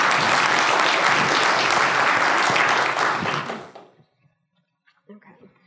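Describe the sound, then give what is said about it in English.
Loud, dense applause from a crowd for the panelists of a panel discussion fills the first few seconds, then cuts off abruptly, followed by a brief quiet pause and faint shuffling sounds. “So please, let's have a round of applause for all of our panelists.”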